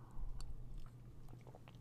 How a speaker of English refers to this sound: Yeah, I'm gonna sip some water. Give me a second.